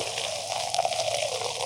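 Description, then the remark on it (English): A short, steady pour of champagne into a glass, a continuous hiss of liquid and fizzing bubbles with a faint rising gurgle, no voices. “You don't get a real good pour on that.”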